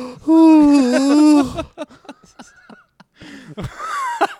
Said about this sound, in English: What? You're yawning in the middle of a sentence even?